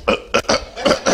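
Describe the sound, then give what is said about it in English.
Five short, harsh cough-like bursts made before singing a song, in an uneven rhythm, each loud and throaty with brief pauses between, and no talking. “there's a song, you have to cough before you sing it.”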